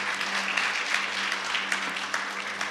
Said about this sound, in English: Would you guys clap for Lauren?